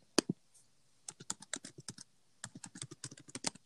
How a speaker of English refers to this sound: Girl, your typing is really hitting my earlobes. No, my ear.